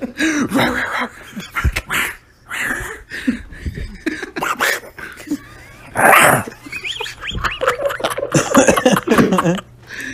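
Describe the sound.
A dog barks and growls in a series of loud, uneven bursts, with a strong snarling outburst near the middle and people talking around it.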